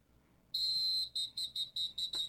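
A loud, shrill whistle sounds: one long blast, then a quick run of five short, sharp toots in a steady rhythm. No one speaks.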